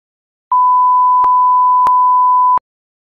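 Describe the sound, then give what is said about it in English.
A single steady censor bleep tone, loud and continuous for about two seconds, with faint clicks of clipped speech cutting through it and no audible talk around it. “You might want to beep this out.”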